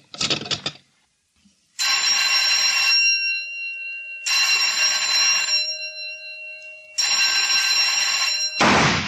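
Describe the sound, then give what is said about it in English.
Three loud, sustained electric bell rings at a shooting range, signalling rapid fire on the third bell, each lasting just over a second with short silent gaps between; a brief burst of noise comes before the first ring and after the last. “Fire on third bell.”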